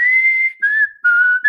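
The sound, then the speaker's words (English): A person whistles a short melodic phrase of a song's tune, a few sustained, sliding notes with brief gaps between them, fairly loud, with no talking. “Anyway, I can't whistle, but you know, it was a song that was the whole song.”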